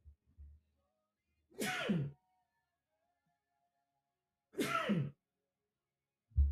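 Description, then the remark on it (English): Two sharp, loud sneezes about three seconds apart, each a quick breathy burst, with quiet pauses between them and a few soft low thumps at the start and end. “Oh, I'm going to sneeze.”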